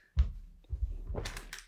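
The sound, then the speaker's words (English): A door shuts with a single dull, low thump, followed by a stretch of muffled rattling and shuffling, then a brighter hissing scrape toward the end. No one speaks. “Lovely door shutting there, coming back.”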